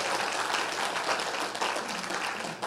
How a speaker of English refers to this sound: Come on, everybody. Let's clap if we're going to clap a little bit.